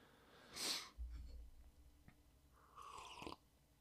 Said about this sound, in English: I'd also like to apologize for my sniff. I have a sniff, and then I think I have a throat clear. Completely unconscious of it until I listen to my podcast.